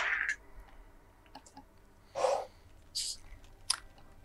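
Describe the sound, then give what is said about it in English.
New dice clatter across a table in several short, sharp rattling bursts spaced over a few seconds, fairly quiet, with no talking, rolled for stealth and sleight of hand checks. “Well, these new dice have been doing me good so far, so let's see what we got.”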